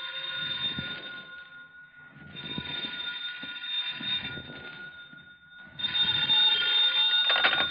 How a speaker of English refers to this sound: In an hour and a half, I was still looking. Then the phone rang.